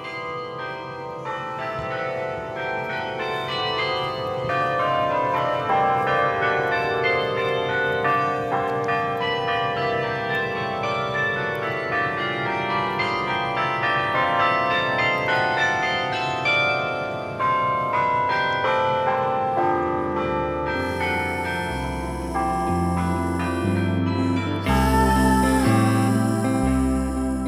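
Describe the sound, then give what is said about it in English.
Church bells, rung by a real person up above, peal continuously in a dense, overlapping wash of ringing tones, loud and sustained, with deeper resonant strikes joining toward the end and no voices present. “It's kind of nice to know there's a real person up there, ringing out the bells to say, hey, the pandemic's still on, but you can come outside, be around other people again.”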